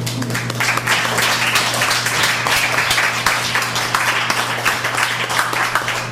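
Sustained audience applause after an open mic reading at the Elm Cafe on November 6th, an event in CFRC's annual funding drive: a dense, crackling wash of many hands clapping at a steady level for about six seconds, with a low electrical hum underneath and no voices.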